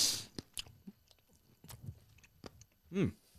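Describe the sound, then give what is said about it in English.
Vigorous, wet chewing of spicy chicken right up against the microphone, a fast run of smacking, crunchy bites with a short vocal sound near the end. “I was chewing like pretty furiously in the mic.”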